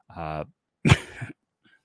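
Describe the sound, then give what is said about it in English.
A short voiced hum is followed by a single harsh cough with a sharp burst and a rough trailing rasp, then quiet. “as I said, I'm going to cough 40 times in this podcast here.”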